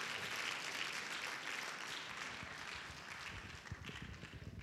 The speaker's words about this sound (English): Come on, y'all, just clap your hands for Jesus. Amen.